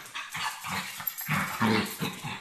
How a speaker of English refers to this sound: Sorry, stupid dogs are having a fight.